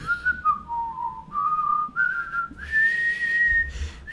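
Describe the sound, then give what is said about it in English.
Someone whistles a short melody, the clear pitched tone stepping down and then rising to a held high note, loud with no talking over it. “famous pop star or whoever, and you're expecting to hear her do her whole yodeling tight national anthem, and instead it's whistling.”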